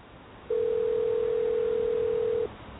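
A phone call to an emergency line: one steady, mid-pitched telephone tone holds for about two seconds over faint line hiss, then cuts off. No one speaks.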